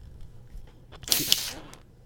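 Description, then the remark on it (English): A soda bottle is cracked open behind a towel: a couple of sharp clicks, then a brief rush of bright, hissing fizz that swells and fades within about half a second, over faint background noise. “So you could hear that fizz. It's fizzing up so much.”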